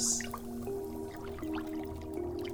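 Dry ingredients are stirred clockwise into water, with soft wet swishing, faint drips and sloshes running continuously over a low steady hum. No one speaks.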